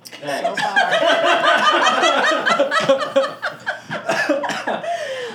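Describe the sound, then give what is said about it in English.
Several people laugh and talk over each other, with a run of short, harsh coughing bursts breaking through in the second half, as they cough after smoking homegrown marijuana. “That's all right. Everybody's coughing. It's okay. Even I'm coughing.”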